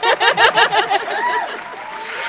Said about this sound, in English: Clap. Yay.